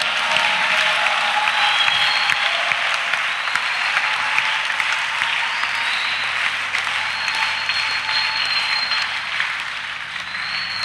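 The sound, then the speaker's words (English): An audience claps steadily in praise of God, sustained applause in a dense, loud wash of many hands that holds level for about eleven seconds with no voices standing out. “And as you are clapping, you are preparing yourself for the next thing that God is about to do for you.”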